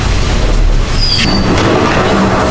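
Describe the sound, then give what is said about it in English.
A blast from a Drax plasma laser: a thin, high whine streaks across a heavy, roaring low rumble, with sharp bursts of hiss flaring up midway. No one speaks. “The Drax plasma laser.”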